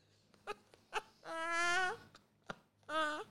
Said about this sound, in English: While the cat cries, background.